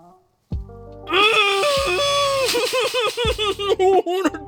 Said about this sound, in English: Let's do a vocal warm-up. As always, the vocal warm-up is just closing your eyes and just screaming into the pillow the first thing that pops into your mind.